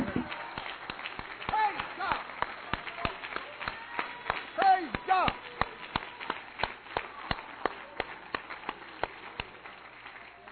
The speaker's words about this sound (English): Aren't you glad you know Him? Give Him a hand clap.